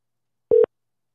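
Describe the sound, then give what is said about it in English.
A single brief telephone tone from an outgoing call placed to reach someone's voicemail, a steady electronic beep that sounds once and cuts off, clear, with silence around it and no voices. “Try to like let us phone number ring him because of voicemail.”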